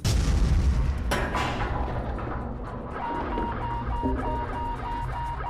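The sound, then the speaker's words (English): A loud, deep boom erupts as an airplane's engine 3 fails, followed by a sharp crack about a second in, then a steady rumbling roar with faint whining tones that carries on to the end. “I just lost engine 3. Is that what that was? Yeah, crazy, right? Wasn't that so loud?”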